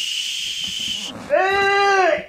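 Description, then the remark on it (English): A whistle on a beer mug is blown: a second of breathy hiss, then a loud, reedy tone lasting about a second, buzzy and nasal enough to sound almost like a bleat. “Get me another beer whistle.”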